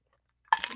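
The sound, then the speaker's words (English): Someone takes a quick drink of water: after near silence, a sudden bright clink gives way to crinkly, slurping noise that continues briefly at a moderate level. No one speaks. “Pardon me while I take a drink of my water real quick.”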